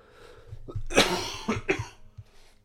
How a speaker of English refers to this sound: Sorry about the cough. Still coughing.